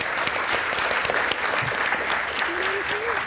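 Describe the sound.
A sustained burst of audience applause, dense and steady throughout, with many hands clapping at once and a faint voice-like tone rising near the end.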